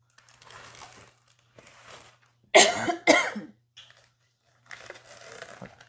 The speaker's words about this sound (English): That's fine, I mean. We're humans, we cough.